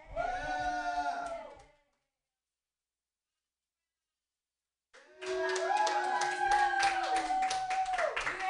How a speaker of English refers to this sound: Clap your hands together, real audience people. Yay!